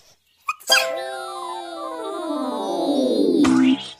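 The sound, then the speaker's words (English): A cartoonish sneeze: a long, squeaky, trumpet-like wind-up with pitches sliding against each other for about three seconds, then a sudden burst near the end. No one speaks. “Oh my goodness, it looks like she's about to sneeze.”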